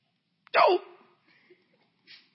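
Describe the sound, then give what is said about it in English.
A single sharp, loud sneeze bursts out, its voiced tail dropping quickly, followed by a few faint breaths and small rustling noises. “God bless you.”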